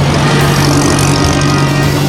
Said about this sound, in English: The open roads, the roaring Bentley, the quest ahead.